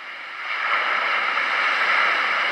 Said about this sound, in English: More ocean.